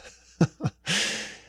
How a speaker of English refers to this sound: Excuse me a minute. Let me clear my throat.